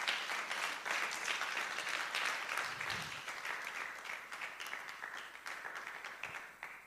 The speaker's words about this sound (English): Shall we clap for Christ Jesus this morning?